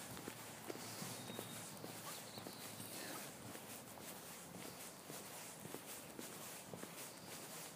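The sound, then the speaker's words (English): Someone running: a quick, steady patter of footfalls repeating throughout, set against a constant hissy background with no voices. “There's somebody running.”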